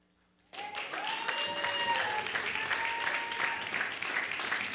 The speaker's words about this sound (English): Oh, very few claps. Let's do it one more time.